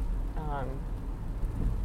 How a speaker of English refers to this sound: You know, it was not raining and now it's raining. So, well, you know, enjoy the rain with me.